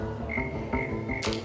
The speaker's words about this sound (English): Frog!